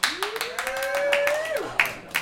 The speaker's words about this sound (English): So, all right, audience, let's give us a cheer for loud sex.